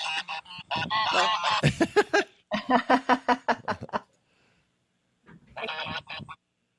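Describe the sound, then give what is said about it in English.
A flock of rescued domestic geese beside a barn honks loudly, a dense run of overlapping calls in rapid rhythmic bursts, then a pause and a final short burst of honks. “These are domestic geese, and some of them came from the food industry, the down industry.”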